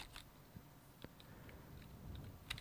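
A few faint, irregular clicks of keys being pressed on a computer keyboard while typing google.com, spaced out slowly against a quiet background with no one speaking.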